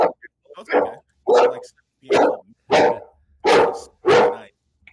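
A dog barks repeatedly, about six or seven loud, sharp barks in a steady rhythm, with short pauses between each one.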